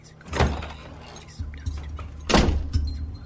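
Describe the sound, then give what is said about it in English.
A bar door bursts open with a loud bang as a man bursts through it, followed by a softer knock and a second heavy slam about two seconds later, with faint rattling and low rumble between the impacts. “Then, some wise guy from Harlem burst through the door.”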